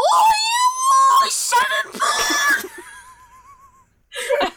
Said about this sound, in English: Screech as loud as I can, and I say it's 7 bong. That clipped the audio as well, which I'm happy.